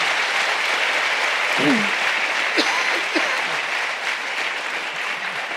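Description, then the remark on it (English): Sustained applause from a live audience, a dense steady patter of many hands clapping, with a few faint voices and cheers mixed in. “You can clap for that.”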